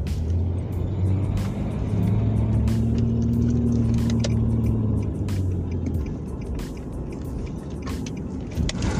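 Steady low road rumble from inside a car driving home from work, with a big truck's heavy engine droning alongside for a few seconds, like it is passing, plus scattered clicks and bumps over the noise.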